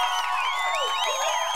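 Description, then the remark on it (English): A crowd applauds and cheers for a moment, with rising and falling whoops and whistles riding over a steady, fairly loud wash of noise. No one speaks. “I'm giving a big round of applause of my own to them right now.”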